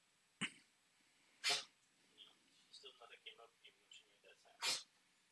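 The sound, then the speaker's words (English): A small female puppy coughs three times in short, harsh, hacking bursts spread a second or more apart, fairly loud, with softer murmuring voice-like sounds in between. “Did she cough up whatever the hell she was dying?”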